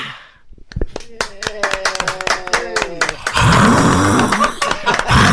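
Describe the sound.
Sharp, scattered claps under a voice build for a few seconds, then give way to a loud, dense wash of crowd applause that fills the rest of the moment.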